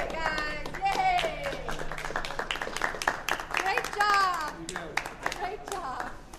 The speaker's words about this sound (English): leads a crowd of staffers and other guests in a round of applause.